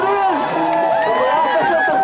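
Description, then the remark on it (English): A dense, steady crowd roar of people clapping and cheering, many voices overlapping in excited cheers and shouts at a loud, constant level, with no single speaker standing out. “They're clapping, cheering. I mean, listen to the crowd. They're going nuts, man.”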